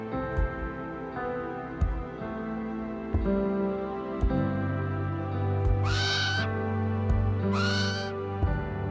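Two loud owl calls from an owl in a forest ring out close together near the end, each a drawn-out wavering hoot, over a steady, low musical drone with occasional soft knocks.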